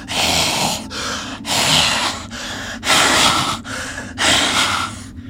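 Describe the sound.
Someone imitates raspy, labored breathing with their voice: six or so harsh, noisy breaths alternating in and out at a steady rhythm, fairly loud, with no talking.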